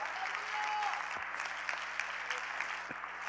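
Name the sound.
audience clapping hands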